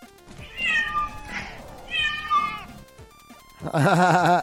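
A cat meows loudly three times in close succession, the calls rising and falling in pitch, with the last one the loudest and most drawn out. No one speaks.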